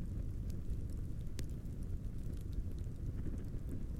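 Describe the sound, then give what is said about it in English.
A campfire of logs burns with a steady low roar, broken by scattered sharp crackles and pops, one louder snap standing out among the softer ticks. No one speaks. “I like to sit by the flames before bed. I throw a few logs into the campfire.”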